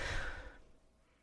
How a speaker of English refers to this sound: My dog is snoring over there. I just heard him snore. He's so cute.